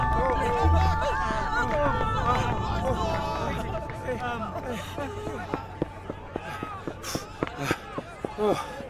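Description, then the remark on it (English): A dense crowd stampedes past with overlapping shouts and babble, running footsteps thudding irregularly over a steady hum, the chatter thinning slightly toward the end. “It's impossible, Zoe. trying to stop these people. They'll flatten us underfoot.”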